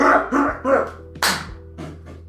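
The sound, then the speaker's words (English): A voice imitates loud, heavy thumps of two big apes rolling down the gigantic bleacher steps of a basketball gym: a run of about five punchy bursts in an uneven rolling rhythm, one sharp and bright, the last ones softer. “It's just two fucking just loud thumps as they roll down those gigantic steps.”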